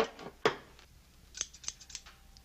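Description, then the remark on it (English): A pair of scissors snips a few times, one sharp cut followed by a quicker run of smaller metallic clicks, with no voices present. “My scissors.”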